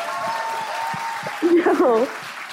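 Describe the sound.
A steady wash of audience applause, fairly loud throughout, as the audience votes by clapping on whether a person on the phone is a nicer human being than they are; a voice briefly calls out over the clapping near the end.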